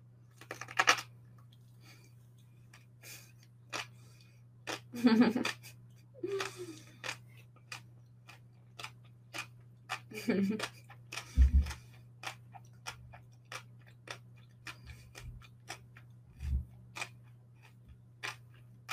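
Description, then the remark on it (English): Crisp crunching of someone chewing crunchy rolls of carrots and kelp noodles, many sharp irregular bites and crackles in quick succession over a low steady hum, with no talking. “Every bite is equally crunchy, yeah. The carrots and the kelp noodles together.”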